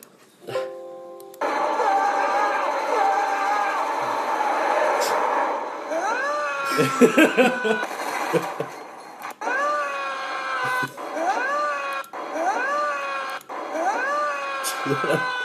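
Tom Cruise screams in a scene from The Mummy while holding on to an airplane that is going down: a series of loud, strained cries with rising pitch, repeated in bursts over a steady droning roar that fills the first several seconds alone.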